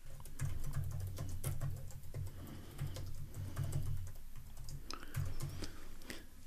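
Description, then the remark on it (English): Rapid, continuous typing on a computer keyboard, a steady flurry of clicky keystrokes with brief pauses and no voices. “Oop, I'm typing faster than I can think.”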